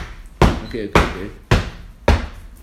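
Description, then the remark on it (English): Steady, evenly spaced knocks, about five in a row at a walking pace, sharp, someone tapping out the sound of something walking outside a door. “And then I hear and like outside of my door or something like walk. Like something was like walking. Just like this.”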